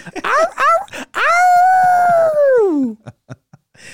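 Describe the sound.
A person imitates someone howling at the ceiling in the middle of class: a few quick rising yelps, then one long, loud sustained howl that holds steady before sliding down in pitch, followed by a few faint short noises.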